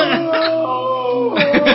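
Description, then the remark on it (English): A dog howls in one long, steady, tonal wail that holds its pitch, framed by rougher, breathier bursts at the beginning and end. It is fairly loud, with no talking. “too much howling.”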